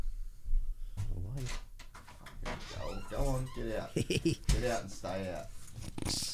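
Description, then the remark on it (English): A dog brought back from America whimpers and whines to be let out in a series of high, wavering cries, fairly loud, with indistinct voices and some shuffling, knocking sounds around it. “He's actually American, that dog.”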